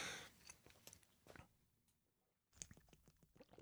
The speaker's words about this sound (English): Oh yeah, it's picking up that water swallowing sound really good there.